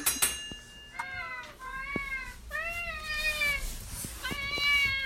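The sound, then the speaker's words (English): Four cats at feeding time in a house meow insistently and overlapping, a chorus of rising and falling cries one after another, with light clatter and household noise underneath. “He sent me a recording of what feeding time is like at his house.”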